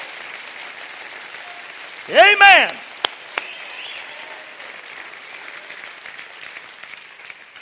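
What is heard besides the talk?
audience applause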